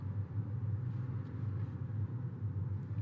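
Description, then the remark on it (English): Steady low-pitched road rumble of car traffic stuck on a highway, a continuous droning hum heavy in the bass with no distinct passes, heard from inside a car in a slow-moving line of vehicles. “Stuck in Traffic”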